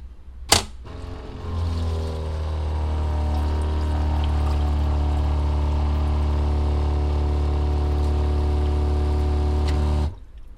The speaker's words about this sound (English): And I'm going to press down on the button on the faucet, and you'll hear the pump. You're going to hear water coming into this little 8-ounce glass.